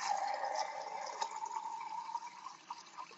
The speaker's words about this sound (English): Yeah. That's water. Yeah, I know.